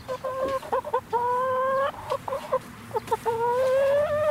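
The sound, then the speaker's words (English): Chickens cluck in quick stuttering bursts, each run ending in a long, drawn-out squawk, as they are given treats of peanut butter and bugs. The pattern repeats twice with no one talking. “here's some chickens.”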